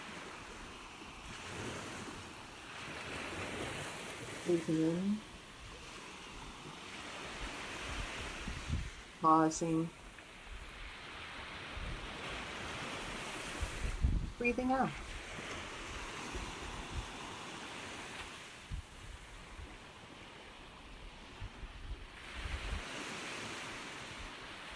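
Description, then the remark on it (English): Steady ocean surf washes and rolls continuously, a broad hissing rush with gentle swells, while a calm voice speaks a few short phrases over it. “And as you breathe in and pause, breathe out, see if you can connect to your own waves, your own rhythm. And if the sounds in the background help you do that, follow along with them.”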